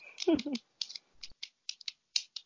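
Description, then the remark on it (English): A deck of tarot cards being shuffled: a quick run of crisp, papery flicks and snaps in an irregular rhythm, with a brief murmur of voice at the start. “Wow, they have me shuffling here.”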